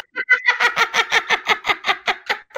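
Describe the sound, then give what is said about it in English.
A duck quacks in a rapid, steady run of about a dozen loud, raspy calls, each one evenly spaced, with no talking over it. “Last minute, putting in a duck background.”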